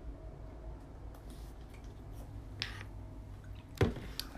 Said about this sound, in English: I just need to open this bottle up. I need a sip of water real quick.